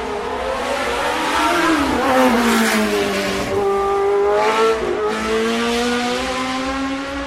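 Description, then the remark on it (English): The Cosworth engine of a Lotus 72 race car in John Player Special livery screams loudly and continuously, its pitch dipping and climbing as it shifts gears and revs. It is heard alone, with no voices for the whole stretch. “Oh, that was one of the greatest race cars of all time, the Lotus Cosworth 72, the John Player Special.”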